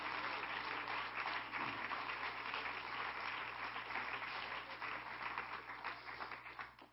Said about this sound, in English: Come on, everybody, clap your hands to the Lord.